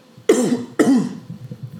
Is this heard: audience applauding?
no